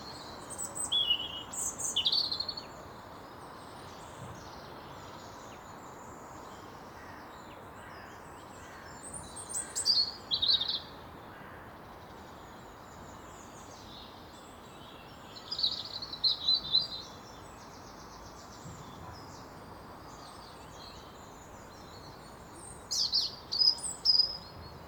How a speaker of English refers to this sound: And I guess birdsong is part of the mix, isn't it?